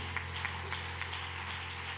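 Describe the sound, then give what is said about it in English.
A church audience claps together in praise of the Lord at an evening service, in a steady, dense patter of hands, fairly quiet, with a low constant hum beneath and no voices. “Let's give the Lord another great hand clap of praise.”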